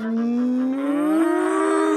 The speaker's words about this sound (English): The cows bellowed. Yeah! Moo!